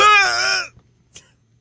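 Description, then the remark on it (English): A single loud, strained scream bursts out for under a second, raw and harmonic with a wavering pitch, let out after 30 seconds of pushing, pulling and grunting, then cuts off into near silence broken only by a couple of faint clicks. “The scream that was left, as though it felt like the most primal scream, I believe, after 30 seconds of, the scream was actually this.”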